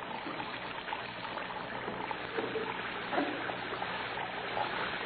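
Water runs and trickles steadily from a tap into a plugged basin and overflows onto the floor, a continuous splashing flow at moderate volume with no voices.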